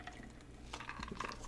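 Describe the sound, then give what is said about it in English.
A person drinks from a water bottle: faint plastic handling, then a few soft swallowing sips with light liquid sloshing, quiet and without any talking. “We could literally reach out and touch him, like I'm touching this water bottle and go take a drink.”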